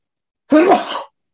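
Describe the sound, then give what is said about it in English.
A single loud, very strong sneeze: a sudden voiced burst that sprays into a broad hiss and fades out in about half a second, with silence on either side. “I'll let you know when it's just a very strong sneeze.”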